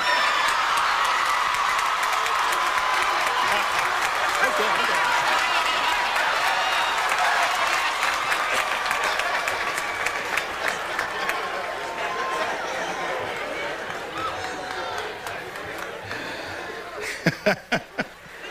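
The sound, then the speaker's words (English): A large commencement audience applauds loudly and steadily with cheering mixed in. The clapping gradually thins and fades, ending with a few scattered individual claps. “If you are appreciative and applaud loudly very early on, you get a nice short speech.”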